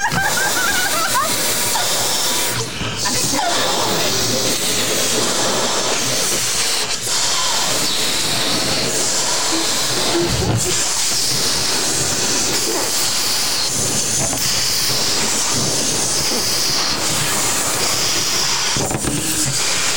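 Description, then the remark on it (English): Balloons are blown up by mouth in a Halloween game, racing to make them pop by blowing: a loud, steady, breathy rush of air that hisses on without pause for the whole stretch, with faint voices now and then underneath. “5 Halloween points are on the line to the first person who blows up their balloon starting now.”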